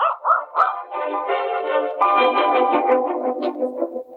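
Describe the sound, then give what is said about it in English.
A mixed-breed puppy with big feet lets out a few quick, high yaps, then breaks into a longer run of whiny, drawn-out barking, fairly loud, with no one talking. “It is an odd-looking pup.”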